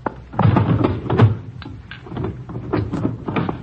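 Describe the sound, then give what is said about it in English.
A drawer or cupboard is handled, with a series of wooden knocks, scrapes and thunks spread over a few seconds as it's opened and shut. “I heard you putting something in a drawer when we knocked on the door.”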